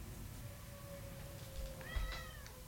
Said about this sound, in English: My beautiful cat, come here.